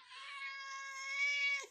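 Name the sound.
cat meowing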